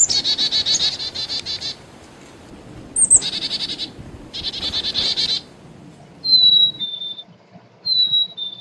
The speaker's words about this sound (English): Here, one of my favorite birds that we have actually quite prevalently in the U.S., I love chickadees. I think chickadees have some of the sweetest little calls.